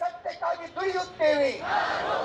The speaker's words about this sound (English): Where the crowd chanted, "Sister, you are not alone. We are proud to say, I am Gauri."